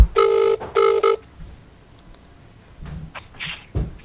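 A telephone rings as a call is placed, with two short, loud electronic trills in quick succession, followed by a quiet pause with a few faint clicks and rustles.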